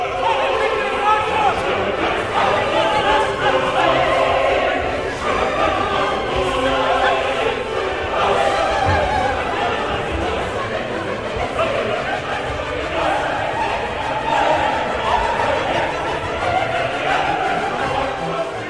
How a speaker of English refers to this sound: Does sound like a riot. Everybody is going pell-mell everywhere, you know, shouting, although they're not really shouting, they're singing. It's an amazing scene.